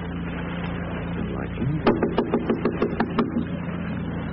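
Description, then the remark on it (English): A quick run of about nine firm knocks on a front door, evenly spaced, over a steady low background hum with no one speaking. “Stop this here. I'll knock.”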